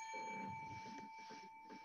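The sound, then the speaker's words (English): A steady, bright electronic bell rings continuously, its sustained tone unbroken throughout, with a low rumbling murmur underneath. Fairly quiet overall. “All right, ring in a bell.”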